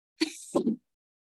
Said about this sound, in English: A little sneeze. Bless you,